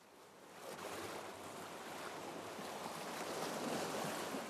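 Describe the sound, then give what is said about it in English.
Ocean waves wash steadily against the shore in a continuous hiss of surf, swelling gently in loudness with no distinct breaks, moderately loud, with no voices present. “I live very close to the ocean, and so I'm very used to hearing the, you know, the many guises and the changing states of the ocean, whether that's calm, lapping waves, or almost the white noise”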